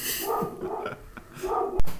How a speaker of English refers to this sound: Oh. Dog noises.